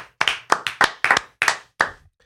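An audience claps in a steady, rhythmic beat, each sharp, bright clap distinct, about nine in two seconds at a moderate loudness, with no voices over it.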